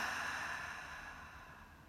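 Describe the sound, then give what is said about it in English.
A soft, airy breath sound, a slow deep exhale, drawn out steadily for about two seconds and gradually fading, with no talking. “Take a deep breath. Exhale. Another deep breath. Exhale.”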